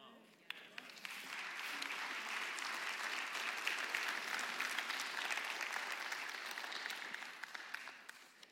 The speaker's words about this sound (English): Way to go, brother. Yes. Amen. Really easy to clap about that.